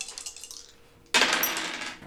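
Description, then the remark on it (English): Quick light rattling clicks, then a sudden sharp clatter of dice tumbling across a hard surface, fairly loud, fading over about a second; the roll comes up 5-3-2. “Since you have a preternatural knowledge, give another dice on that. Don't mind if I do.”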